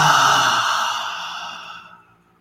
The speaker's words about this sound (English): Deep inhale through the nose. Exhale out with sound.